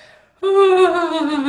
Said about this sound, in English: Now listen, I'm already starting to yawn.